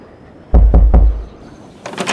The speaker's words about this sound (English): The landhouse door opened as soon as I had knocked, revealing a rustic interior.